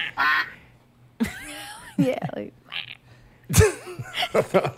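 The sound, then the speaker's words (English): A person imitates a duck or goose with a string of nasal, honking quacks in uneven bursts, fairly loud, with brief gaps between calls. “Ducks. Yeah. we don't have ducks at the park. Geese.”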